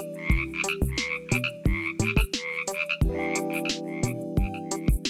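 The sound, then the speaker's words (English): A Baja California tree frog's diphasic, two-part ribbit repeats rapidly and loudly, several overlapping calls in quick, rhythmic bursts, with no talking. “As a result, their diphasic, or two-part, ribbit has come to be regarded as the quintessential frog call.”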